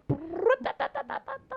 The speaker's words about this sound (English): Brought my chickens in.